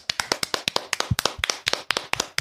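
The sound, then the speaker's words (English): A clapping sound effect: quick, steady hand clapping, about a dozen and a half sharp, crisp claps in rapid succession, fairly loud, with no voices underneath. “you're getting the big clap.”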